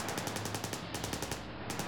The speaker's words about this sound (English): They listened in terror as each car drove past, Thompson machine guns blazing.